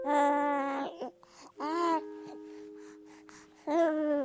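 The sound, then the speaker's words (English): A newborn baby cries in three loud, wailing bursts with short gasping pauses between them, with no talking. “I mean, I want to start this episode the way everybody starts.”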